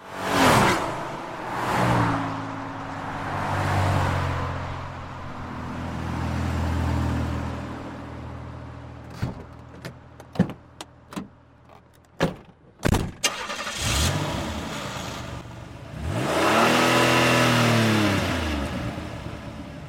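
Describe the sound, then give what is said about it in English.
A 1990 Chevrolet Beretta car engine revs up and down with rising and falling harmonic whines, interrupted midway by a series of sharp clicks and clunks, then accelerates strongly again, loud. “Sounds of regular cars are always in demand, and Chevrolet Beretta 1990 by Big Room Sound delivers.”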